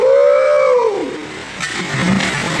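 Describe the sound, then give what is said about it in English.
A voice lets out a falling, whooping cry, followed by a broad, hissy rush of water like a heavy splash into a pool, with a few choppy bursts as it settles. “You can hear how fat that splash is.”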